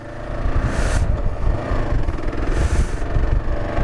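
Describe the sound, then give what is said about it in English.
A KLR650 motorcycle, called Eric, drones loudly and steadily with a rough, rumbling low end, rising in two brief surges of higher-pitched roar as the throttle opens and it speeds up. “Shield on. Speed up, because there's a giant truck behind you that's probably going to run you over.”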